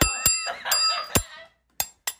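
A bell rings with about six sharp, bright metallic strikes at an irregular pace, fairly loud, its tone lingering between the first few hits before the last two sound more briefly.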